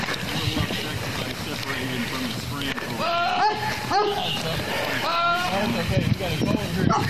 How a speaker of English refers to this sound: the goat sounded just like a person. That's a person. As they got closer, the officers were greeted by the goat's owner and, after apologizing, explained the animal was upset because he had been separated from one of his buddies. Is it goat? It is.